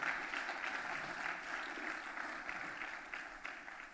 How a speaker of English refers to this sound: Now would be a good time to clap, if you wouldn't mind.